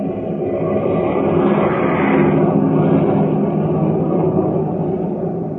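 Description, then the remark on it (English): A steady, loud drone of the engines of a fleet of airplanes flying far overhead in battle formation rumbles continuously, a broad low roar that swells slightly midway, with no voices present. “Far overhead, a fleet of airplanes soars in battle formation, a jagged spearhead against the fleecy clouds.”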